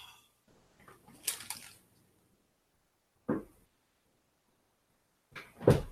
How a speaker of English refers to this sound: And that was him coughing again. Yeah, so much so that I just got a little bit lightheaded.